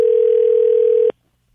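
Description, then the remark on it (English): A single steady electronic ringback tone from an outgoing phone call to a woman who does not answer, loud and clear for about a second before cutting off abruptly into silence. No voices. “If she doesn't answer, do we leave a message?”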